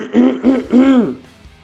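throat clearing

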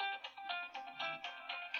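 mobile phone ringing

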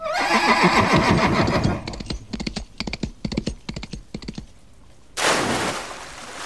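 horse neighing

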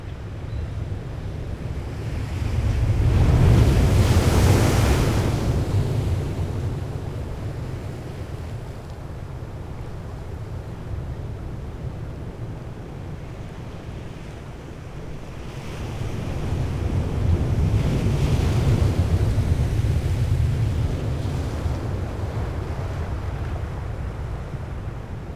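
ocean waves and wind

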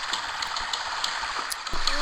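flowing river water

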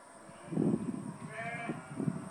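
sheep bleating

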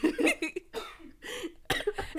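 people coughing

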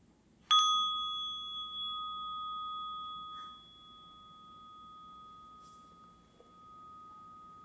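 meditation bell ringing

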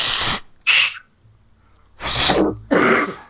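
sneeze

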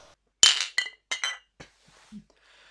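glasses clinking

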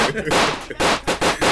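gunshot sound effect

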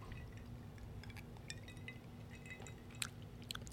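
sipping a cocktail

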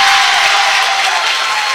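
basketball crowd cheering

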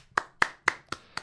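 person clapping

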